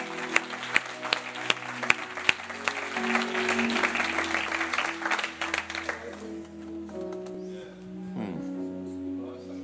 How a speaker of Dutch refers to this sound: Come on, let's give the Lord a hand.